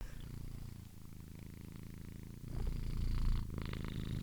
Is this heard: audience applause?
no